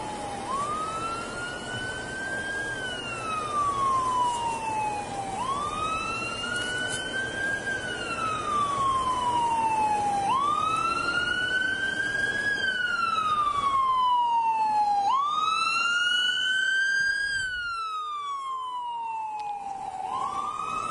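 An emergency vehicle siren wails loudly as it passes, rising and falling in slow sweeps about every five seconds, with a low rumble of road traffic underneath and no voices.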